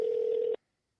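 A single steady electronic telephone dialing tone, loud and clear, holds for about half a second and then cuts off abruptly into silence as a phone call is placed. No one speaks.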